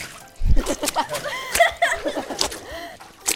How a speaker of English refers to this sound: Livtar jumped in a big mud puddle. Mud splashed on Lizzie. They both started laughing, and Lizzie jumped right in and splashed her back. They started jumping around in the mud.